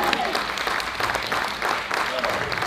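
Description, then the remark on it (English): An audience bursts into sustained applause for God during a sermon, a dense wash of many hands clapping at once, steady and fairly loud throughout, with a few voices calling out beneath the clapping. “Give Him a hand clap.”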